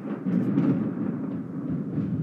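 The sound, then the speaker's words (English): A deep, loud rumble of thunder during a storm with rain and lightning rolls on steadily for a couple of seconds, heavy, with no voices over it. “That was lightning. Thunder and lightning, whatever.”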